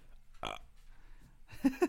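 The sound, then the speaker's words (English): A short, forced burp attempt: one brief rough burst from the throat, then some low, grunty throat noises a moment later. It comes out weak and strained rather than a full belch. “Oh, it was an attempt at a burp.”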